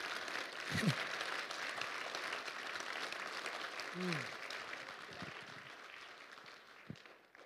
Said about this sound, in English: If you believe that, clap and give the Lord a praise tonight.